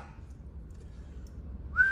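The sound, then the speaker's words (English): A person getting into cold water whistles briefly from the cold, a short sharp tone that rises near the end, over a low, steady rumble of background noise, with no talking. “My GOAT is whistling because it's so cold.”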